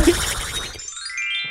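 A chime sound effect: a brief noisy swish gives way to bright, shimmering high tones that ring out and glide upward for about a second, with no talking.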